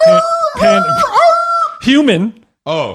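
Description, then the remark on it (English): A voice imitates panicked human screaming in fright: several loud, shrill, wavering yells in quick succession, with a short gap before a final cry. “Human fright being yelled out into the world.”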